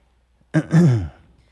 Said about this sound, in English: Let me clear my throat.